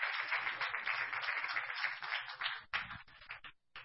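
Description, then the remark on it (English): A seated audience claps their hands unto the Lord in the afternoon, a steady, dense wash of applause that thins out near the end into a few scattered, separate claps before stopping. “You may be seated, but would you just clap your hands unto the Lord while you're seated this afternoon?”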